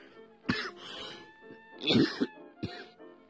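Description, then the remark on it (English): A person with a cough lasting almost a month coughs and clears their throat several times in quick succession, with a couple of sharper bursts near the end; fairly loud, with no talking. “otherwise, I wouldn't have had this cough or having had to clean my nose for, like, how long now?”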